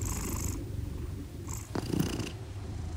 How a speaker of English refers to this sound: I was inspired by my own two cats, Calvin and Hobbs. When I have bad insomnia, their purrs are pretty much one of the only things that can lull me to sleep. Wow, so soothing.